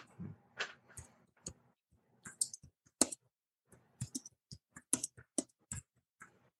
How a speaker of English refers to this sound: What are you typing like this? Hey, two-handed, baby.